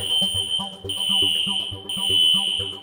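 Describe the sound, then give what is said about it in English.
A fire alarm rings with a loud, shrill, steady high tone that briefly cuts out about once a second, over a rhythmic low thumping in the background. “Literally, I wasn't going to speak with him, except the fire alarm went off.”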